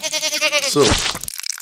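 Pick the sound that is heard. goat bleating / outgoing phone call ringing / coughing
goat bleating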